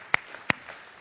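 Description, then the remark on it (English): Hand clapping from a church audience giving Jesus a round of applause: two sharp, prominent claps about a third of a second apart, with fainter scattered clapping underneath and no talking. “Come on, let's give Jesus a round of applause.”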